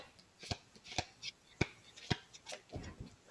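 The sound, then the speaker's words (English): Tarot cards are shuffled and slid off the top of a deck one by one, giving a series of crisp slaps and snaps at an uneven pace, with soft papery rustling between them. “And I'm just pulling them off the top, but you know, you'd lay them out, you do the pick, you put the Wheel of Fortune in there.”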